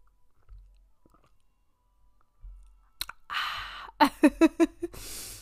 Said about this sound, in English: So cheers to you guys. I'm taking my sip right now.